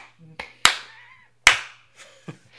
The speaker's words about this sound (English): I'm starting recording. Also, clap. Yeah, no, clap for audio's sake, like to match it up.